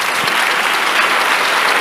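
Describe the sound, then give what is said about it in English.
An audience bursts into steady applause, dense overlapping claps filling the room at a loud, even level for a couple of seconds with no voices rising above it. “Give the Lord a clap of it.”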